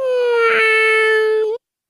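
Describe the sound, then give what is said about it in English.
A cat's meow played in reverse: one sustained, nasal, whiny tone holding a steady pitch, then swelling and bending upward into an abrupt cutoff after about a second and a half. “we're doing a kitty cat meow here in round one. You're going to hear it two times backward, and then we'll see what you sound like.”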